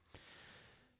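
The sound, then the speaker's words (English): A soft, breathy yawn: a quick sharp intake followed by a long airy exhale, fairly quiet, with no talking. “Oh, I'm yawning.”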